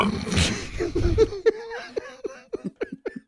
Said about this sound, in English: I mean, that sounds like an almost pukey burp.